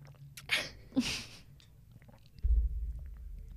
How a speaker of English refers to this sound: so you can hear me gulping water. Should we just make this ASMR? Honestly, yeah.